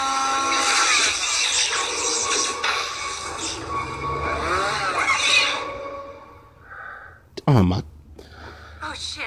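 A loud chainsaw engine in a movie scene roars and revs for several seconds amid harsh, shrill tones, then drops away before a sharp swooping burst near the end.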